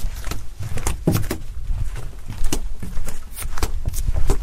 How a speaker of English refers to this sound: It was summer. No, you hear the sweat on the balls of my feet. I think you need to see a mechanic for that, bro. Yeah, my heels have sweat on them, so you hear the peeling